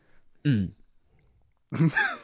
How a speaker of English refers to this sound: Clearing my throat.